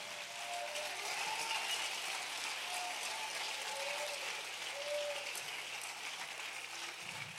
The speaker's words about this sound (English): I wish someone would clap their hands if they believe that.